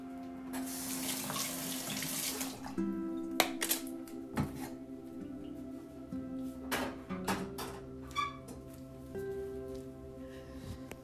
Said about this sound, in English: Nescafe, a lot of bit of sugar, and a lot of bit of cream going into my cup of coffee this morning. I love topping my coffee off